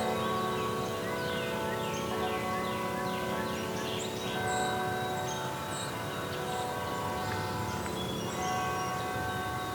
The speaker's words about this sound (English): I think I'll have to wait for these bells to be done to really hear it properly.